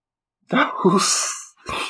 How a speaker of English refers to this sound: Why do I feel the sudden need to yawn? Oh my God, please, I'm taking a yawning break.